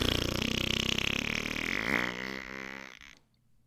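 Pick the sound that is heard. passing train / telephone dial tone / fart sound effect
fart sound effect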